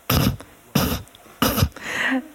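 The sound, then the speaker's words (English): A person imitates coughing through the nose: three short, sharp, breathy bursts evenly spaced, then a softer, longer snort-like exhale. No speech accompanies the sounds. “That was a tricky one because you're meant to kind of cough through your nose.”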